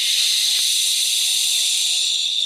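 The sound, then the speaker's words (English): A long, forceful breath pushed out through the mouth after breathing in through the nose, a "waterfall" breath in a guided breathing exercise: a steady loud hiss that holds evenly for about two and a half seconds without any voices. “Waterfall out. I want to hear your waterfall nice and loud. In through your nose. Out through your mouth.”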